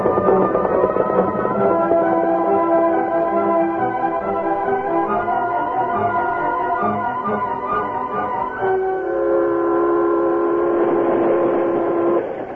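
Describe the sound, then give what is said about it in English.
A steam train runs along the rails about 40 minutes after leaving Monument City, with a continuous, loud rumble and clatter, overlaid by sustained whistling tones that grow stronger in the last few seconds. No one speaks. “About 40 minutes after the train left Monument City”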